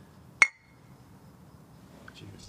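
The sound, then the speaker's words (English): A single bright clink of glasses of Scotch whiskey touching in a toast, with a short ringing tone that fades quickly, over a low murmur; a few faint clatters follow. “Cheers. Cheers.”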